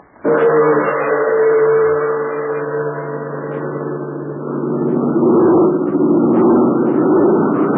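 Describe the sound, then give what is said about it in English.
Hugh Hennick's big American-made airplane, flown for the Chinese Army, drones steadily in flight carrying four passengers to a remote spot many miles from Chongqing: a loud, continuous rumbling hum that swells slightly toward the end, with no voices over it. “Yes, that's Hugh Hennick's big American-made plane.”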